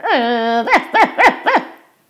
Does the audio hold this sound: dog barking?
yes